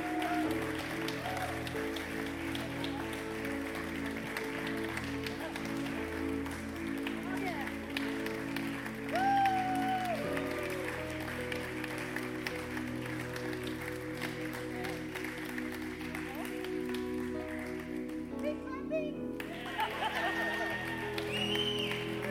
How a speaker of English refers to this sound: Give them a hand clap, everyone.